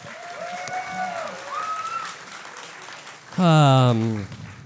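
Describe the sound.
Steady audience applause with scattered whoops and cheering voices over it, ending in a loud, drawn-out shout that rises above the clapping in the final second.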